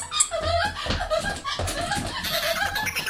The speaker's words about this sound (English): Looky, looky, get the squeaky. Go get the squeaky.